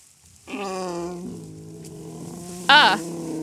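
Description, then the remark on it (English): A pug gives a long, nasal, whining groan that holds steady for about three seconds, then rises into a sharper, brighter squeal near the end before settling back. “That's a pug. Like a dog pug? Yeah, like a dog pug.”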